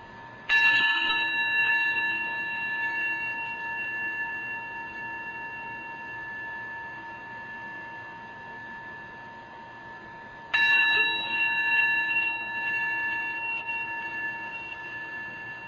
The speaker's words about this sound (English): Receiving the sound of the bell, letting the breath just continue on its own.